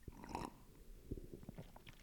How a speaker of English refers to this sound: Hold on, I gotta take a sip of coffee.